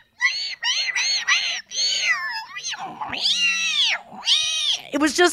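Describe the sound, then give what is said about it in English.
A person's voice imitates whale calls heard through a microphone put in the water: a loud run of drawn-out wailing tones that swoop up and down, ending in a quick burst of high squeaky chirps. “And he put a microphone in the water and it was just like, you could hear all the whale activity.”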